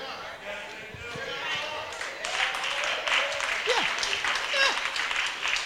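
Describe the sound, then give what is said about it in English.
An audience claps and cheers during a pastor's sermon in a sustained, loud burst of applause, swelling slightly partway through with scattered voices and whoops mixed in. “All them folk clapping, ain't none of them gonna go home and whoop their kids.”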